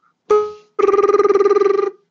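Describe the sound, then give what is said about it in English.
A voice imitates a ringing telephone: one short warbling burst, a brief pause, then a longer rapid trilling ring, loud and steady in pitch. “could you make your ringy ringy noises, please?”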